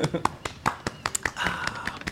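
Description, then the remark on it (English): A soft, polite golf clap: about ten light, crisp claps in a steady quick rhythm, with a voice murmuring faintly underneath partway through. “If we do, the golf clap must be ready.”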